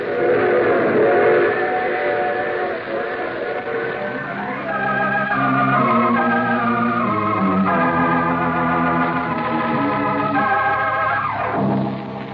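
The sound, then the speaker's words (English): A train whistle sounds in long, sustained chords over the steady, loud rumble and clatter of a moving train, with no talking. “You see, I take the same train every week at this time.”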